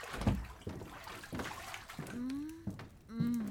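Warm water sloshes in a bathtub as someone lies in it, in a few separate splashes, followed by a couple of soft, drawn-out tonal sounds over the gentle movement of the water.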